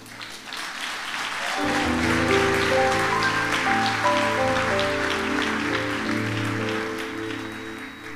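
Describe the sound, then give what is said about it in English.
An audience at a gathering claps in a dense, steady patter that swells in after a quiet opening second and holds fairly loud, with sustained musical tones humming underneath. “I know you are clapping hands, but you're thinking, like, would I go?”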